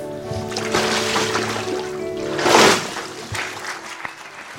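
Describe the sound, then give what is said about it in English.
Water sloshes and splashes steadily during a baptism by immersion, rising to one loud, rushing surge partway through as the baptized young man comes up out of the water, over a low steady hum. “It's just a great thing to see these young men with the smiles on their faces as they come out of that water, even though they've probably swallowed some while they're down there,”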